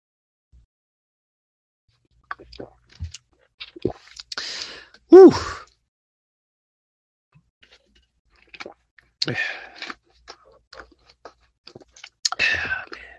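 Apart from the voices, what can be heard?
drinking water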